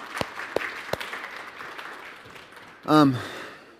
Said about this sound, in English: You should clap for him. You think you should clap for him?